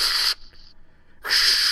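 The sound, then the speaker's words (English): A voice imitates the hiss of a blowtorch igniting: two loud bursts of harsh, bright hissing separated by a brief lull carrying a faint, thin whistle. “sounds like white noise, but it almost sounds like a torch is being turned on.”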